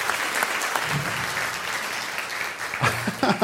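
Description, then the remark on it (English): An audience claps steadily for a group of women, a dense wash of many hands with a few voices rising at the end as the applause carries on loudly. “And if you could give our lovely ladies a round of applause, they would appreciate it.”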